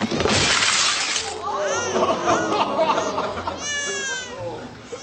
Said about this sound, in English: he dumped a bunch of dishes on the ground and they all shattered.